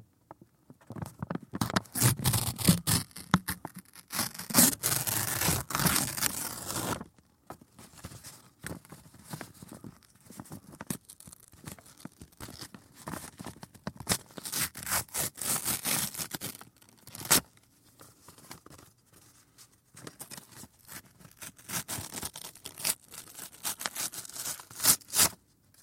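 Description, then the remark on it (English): Paper being ripped in two in several long, rough tearing bursts, fairly loud, with short pauses between pulls and crinkling in the gaps; no one speaks. “And now this paper I shall hold and rip in two to break the mold.”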